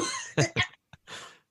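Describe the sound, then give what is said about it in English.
A voice imitates a short coughing fit, as of someone who lost his breath halfway through a spoken line: two sharp coughs, a tiny catch, then a longer raspy breathy cough trailing off, all fairly loud with no talk over it. “and he bursts out the gate with the explanation, and he loses his breath halfway through. And just like starts coughing because he was like, wait, I did it wrong.”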